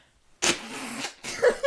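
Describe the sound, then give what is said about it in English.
Two forceful nose blows, the first a longer, honking burst with a buzzy low tone, followed after a brief pause by a shorter, wetter snort. No one speaks. “I'm going to blow my nose and I'm going to purge it.”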